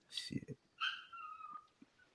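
A dog whines and whimpers in high, drawn-out cries, with a couple of short, sharp barks mixed in. It is fairly quiet, in a brief burst of agitated noises.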